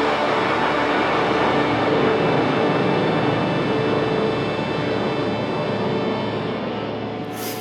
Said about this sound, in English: So the song just keeps building, like there's 50s doo-wop in this and rock, and it just keeps building until at the end of the song there's literally a jet roaring overhead.